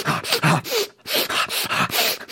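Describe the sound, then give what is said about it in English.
A voice imitates the breathy build-up before a sneeze: a rhythmic run of about seven loud, rasping, hissy gasps, with a short pause partway through. “I'm looking for my keys, and I started making this noise like I was about to sneeze, like.”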